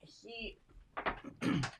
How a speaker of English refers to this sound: And he's starting to freak out. My dog's starting to flip out. You need to open the door and let him out.